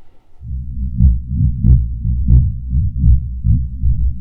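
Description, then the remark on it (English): Deep, low-pitched rumbling thuds of an African elephant's footsteps, seismic vibrations transmitted through the earth, repeating in a slow, steady rhythm like a heartbeat, loud with no voices. “It is the seismic sound of an elephant walking, the vibrations in the earth.”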